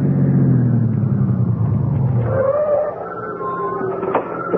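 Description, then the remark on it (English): A car engine rumbles, its low drone loud at first, then easing and dropping in pitch as the car slows and settles on arriving home at night after an evening church service, with a faint whine lingering near the end. “Aren't you going to put the car away,”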